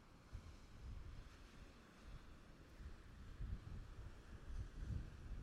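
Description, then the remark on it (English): Steady ocean surf rolls and crashes continuously on a beach, a broad low roar with swelling surges of waves, mixed with some wind buffeting the microphone and no voices. “will get louder as I get closer, and kind of confirm what is that distance at which the surf, the sound of the surf and the waves crashing, kind of drowned me out.”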